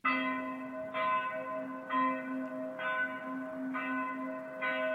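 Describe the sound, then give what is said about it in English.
Warning bells ring out in a steady rhythm near the city walls of Ozalta, sounding in alarm, struck about once a second, each clang blending into a sustained, overlapping hum. They sound somewhat distant, with no voices. “The warning bells began to ring, distant at first, down near the city walls, one and then another, joining each other in a rising chorus of alarm that echoed up the streets of Ozalta, through the upper town, and over the walls of the Grand Palace.”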